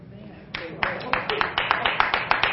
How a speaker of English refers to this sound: Oh, I got a very weak hand clap on that.